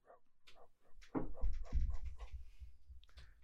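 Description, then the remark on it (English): Hounds bark in the distance just before dawn, a scattered run of short, muffled barks over about three seconds, with a low rumbling background underneath and no voices. “Distant barking sounds of some strange, wayward hounds.”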